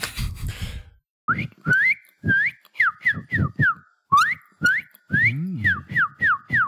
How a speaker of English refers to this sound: Guys, I have to do a lower pitch whistle because it's not working right now.